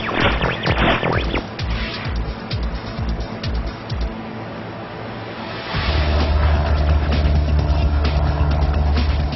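The engine of a flying car, a vehicle that travels on land and in the air, runs loudly with a rough, clattering roar, then settles into a deeper, steady droning hum about halfway through. No one speaks.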